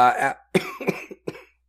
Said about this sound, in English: give me a lot of cough edits tonight, let me just say it. I'll leave that one in just for the joke.